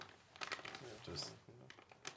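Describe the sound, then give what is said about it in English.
Crinkly plastic rustling of a snack bag being torn open, a burst of sharp crackles, with a voice murmuring partway through. “Yeah, put that shit like a bag of chips. He ripped it right before the good part.”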